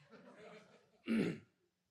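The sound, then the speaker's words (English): A single short, rough cough from a man who is sick bursts out, about half a second long, after a stretch of low, muffled vocal murmuring. “My wife says, you'll cough for 3 weeks before you go to the doctor.”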